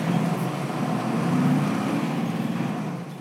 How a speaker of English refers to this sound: hopped in Ford's truck, and we took off